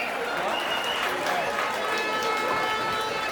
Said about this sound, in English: Everybody, big clap them, clap them, clap them, clap them.